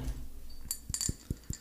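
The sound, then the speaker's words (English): A thick glass candy jar on a wood table clinks and knocks about four times in quick, uneven succession, with dull low thuds mixed with bright, ringing glassy taps. The sounds are fairly soft, and no one speaks. “It was a glass candy jar on a wood table.”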